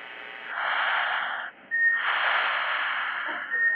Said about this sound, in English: Ah, you hear that? You're breathing.